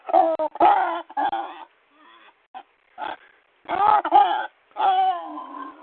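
A pig named Bo grunts and squeals in a series of short, uneven bursts with brief pauses between them, and no one talks over it.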